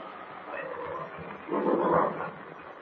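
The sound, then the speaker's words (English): A huge, angry bear growls ferociously in a dark cave as it lumbers toward people, a rough, continuous snarl that swells louder and harsher partway through before easing slightly. No voices. “The huge animal lumbers toward them, growling ferociously.”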